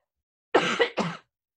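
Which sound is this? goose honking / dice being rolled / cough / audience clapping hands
cough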